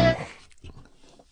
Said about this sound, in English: Maybe it's time you get that cough checked out.